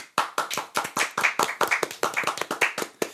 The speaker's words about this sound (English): Hand clap.